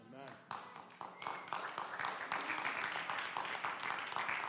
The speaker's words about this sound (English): I don't know if you should be clapping about that right now.